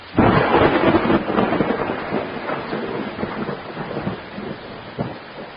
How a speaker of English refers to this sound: With all this rain, some of the roads around here flooded out.